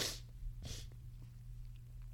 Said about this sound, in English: I'm sorry, I had the sniffles.